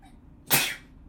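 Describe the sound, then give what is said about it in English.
A single sharp sneeze bursts out about halfway through, loud, with a quick explosive onset that fades over a fraction of a second against a quiet background. “Bless you.”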